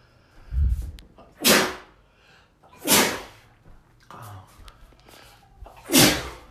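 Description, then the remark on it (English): Three loud sneezes in a row, each a sharp explosive burst, separated by short pauses with quick inhaling breaths before them. “It wouldn't be a show if I didn't sneeze or cough or burp or say or fuck.”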